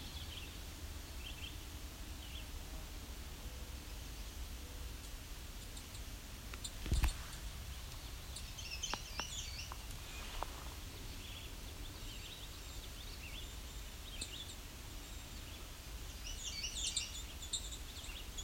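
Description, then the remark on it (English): Bird song comes in a few short, varied phrases, mostly near the middle and end, over a steady outdoor hiss with a sharp click or two and no talking. “Hear all that variability. That song changes.”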